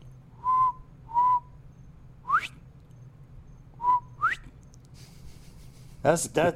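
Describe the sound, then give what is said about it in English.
A person whistles an imitation of a bobwhite quail call, twice: flat mid-pitched notes followed by a sharp rising whistle, with a brief burst of voice at the end. “You want to hear my quail call?”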